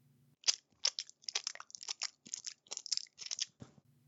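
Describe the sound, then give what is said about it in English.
Loud, wet, crunchy chewing of grub, chewed obnoxiously, a rapid run of about a dozen bites and mashing sounds lasting several seconds, with a faint low hum before and after. “Runt frowned, then put some grub into her mouth and chewed obnoxiously.”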